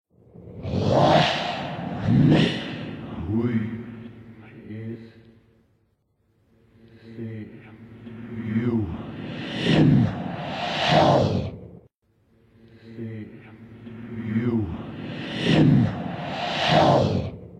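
A 1985 British heavy metal song, intentionally backmasked, played in reverse, its garbled vocal phrase, heard as "see you in hell", looped three times in a row, each pass swelling and cutting off abruptly with swooshing, backwards-sounding attacks.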